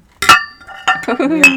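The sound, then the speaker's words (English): A single bright clink as a glass and an aluminium can tap together in a toast with beer, ringing briefly before fading. A voice begins speaking soon after. “Glass aluminium combo.”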